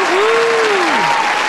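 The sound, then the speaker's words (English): Loud, dense applause roars steadily throughout, with a single whistle-like tone that glides up, holds, then slides down beneath the clapping. “Now, can we hold the applause, please?”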